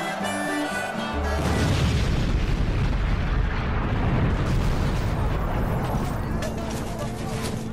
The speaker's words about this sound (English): At 2:11 a.m. on April the 27th, 1865, in Mid-River, 7 miles upstream from Memphis near Marion, Arkansas, the Sultana's boilers blow apart, and the massive explosion dumps hundreds of people, some dead, some alive, into the cold Mississippi River.